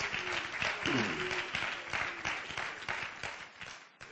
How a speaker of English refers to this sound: One more time, let's clap our hands together.